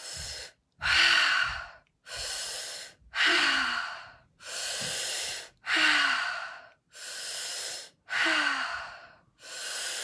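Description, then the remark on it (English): Deep, forceful breaths drawn in and pushed out through the mouth in a steady rhythm during a guided breathing exercise, about eight or nine loud airy rushes separated by brief pauses, with no talking. “No, sorry, breathing in through your mouth and out through your mouth.”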